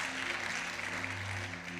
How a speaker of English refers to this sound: Amen. Come on, clap your hands. Amen.